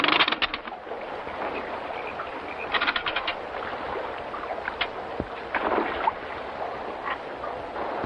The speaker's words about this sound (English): and you can barely hear them because the noise of the boats rocking against the friggin' whatever you call that, the dock, water, little bits of planks going out to the sea, the dock.